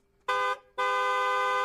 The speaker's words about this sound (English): just sounded like the second horn was maybe a little louder